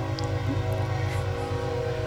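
A steady, loud rumble of a passing train, played as a sound effect, with a continuous droning hum and hissing noise, filling the whole moment without any talking.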